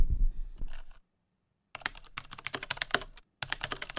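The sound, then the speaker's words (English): Rapid, clicky mechanical keyboard typing, coming in two bursts of dense keystrokes separated by brief pauses, after a low rumbling thump at the start. “That, ladies and gentlemen, is a horribly clicky keyboard,”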